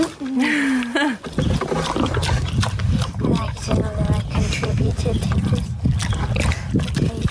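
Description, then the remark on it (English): A pig gives a short high squeal, then grunts and snorts loudly and continuously as a person feeds it at a dinner party, with voices murmuring in the background. “that was Caroline feeding the pig”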